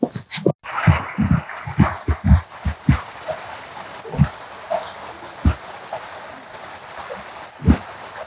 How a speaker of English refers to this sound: I hope you can hear that beautiful water. So now I'm passing this fence, this wooden fence, that is near the creek